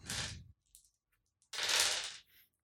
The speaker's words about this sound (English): Why am I still rolling that dice?